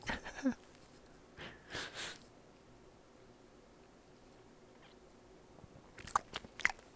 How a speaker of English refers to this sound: Oh, dude, that's another thing. I fucking chew so fucking loud. And what's weird is to me, it's new. But apparently, I've been chewing loud my whole life.